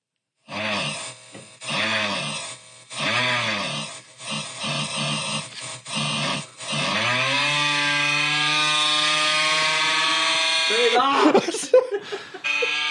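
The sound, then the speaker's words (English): A meme audio clip: a loud, buzzing engine-like drone, much like a lawnmower, sputters in several short revving bursts, then holds a steady rising whine before breaking into rough, crackling noise at the end. “Man, it sure sounded like a lawnmower. It was a meme”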